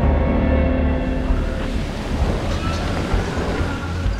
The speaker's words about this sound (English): Thor stared at the ocean waves churning beneath Asgard. The wind whipped at his hair, and snow pummeled his eyes.